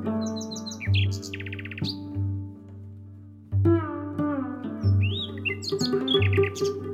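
A nightingale sings bursts of rapid trills, whistles and chirps over a steady, low, droning harmonic tone that swells and pauses throughout. No one speaks.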